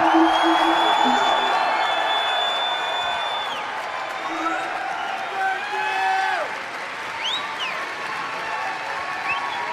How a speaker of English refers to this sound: It's surprisingly quiet because everybody's holding their phones. Give them a cheer!